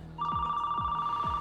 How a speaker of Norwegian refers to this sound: så hører han mobiltelefonen til William ringe, og den ligger inne på soverommet